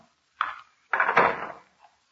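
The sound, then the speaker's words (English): Three different locks on a door being unlocked: a sharp metallic clack, then a longer rattling, scraping burst of bolts and latches, ending in a faint tick. No one speaks. “Casey, she's unlocked 3 different locks to open that door.”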